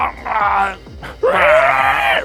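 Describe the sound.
A person vocally imitates a creature screaming out after being hit: a short strained wail, a brief catch, then a longer, louder, rising shriek held for about a second.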